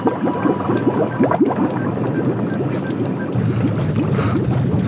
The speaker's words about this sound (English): Did you see the water in that tub boil and the temperature gradient?